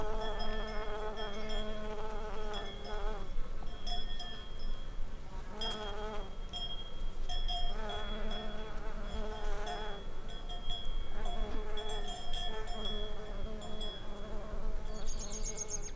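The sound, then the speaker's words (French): A bumblebee buzzes continuously for the whole stretch, its low droning hum wavering in pitch as it moves, with faint metallic tinkles of a distant cow's bells in the background and no voices. “j'ai des images très nettes de l'endroit où j'étais posé, en train de m'amuser à enregistrer un bourdon, accompagné par les tintements de cloches d'une vache au loin.”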